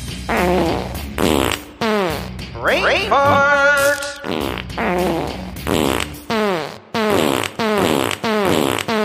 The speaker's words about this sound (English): So here's my theme song, which I think is superior. Brain farts. And here's my brain farts theme song.